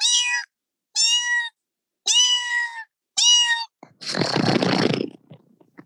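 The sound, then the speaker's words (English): A person imitates a cat, giving four short, clear meows in a steady rhythm, then a longer breathy, hissing rasp. The voice is fairly loud, with no other talking. “My cats are the same when we do cat noises, and I think I'm quite good at cat noises now because I've had cats all my life.”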